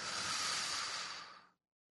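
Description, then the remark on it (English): A single long, airy deep breath in and out, taken during a guided prayer, rushing steadily for about a second and a half before cutting off into silence. No one speaks. “Oh, let's take a breath on that one.”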